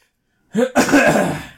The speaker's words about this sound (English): I'm coughing on my podcast. What's going on with my brain?